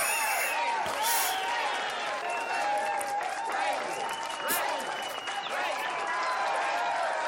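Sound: crowd applauding and cheering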